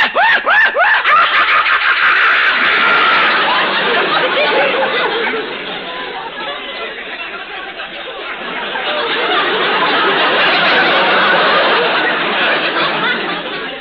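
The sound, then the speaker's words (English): A voice imitates a hyena's maniacal screech, a loud, continuous stream of high, cackling, chattering whoops that rise and fall for over ten seconds without pause. “The maniacal screech of the hyena.”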